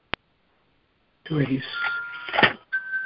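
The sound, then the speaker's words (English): Wind chimes ring in the wind with sustained, overlapping metallic tones for about two seconds, swelling and fading, while a voice briefly talks underneath. A single sharp click comes just before. “I hear either chimes or something in the background.”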